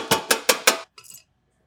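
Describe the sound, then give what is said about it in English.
Hot cornstarch pudding is poured onto a tray to chill it: four loud, evenly spaced metallic knocks of a utensil against a pan, then a brief, softer scraping. No one speaks. “And then usually to chill it, we pour it on a tray.”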